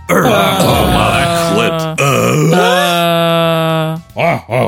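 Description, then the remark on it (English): Several voices groan and grunt together loudly, drawn-out moaning tones that waver and overlap, then break into a few short, choppy grunts at the end. “More grunting and desperate breathing. All right, I need grunts from everyone.”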